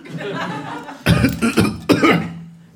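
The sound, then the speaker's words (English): A voice imitates coughing: a murmured lead-in, then a loud burst of several rough coughs followed by one more hacking fit before it trails off. “Three of the looters collapse on the ground, coughing out spores.”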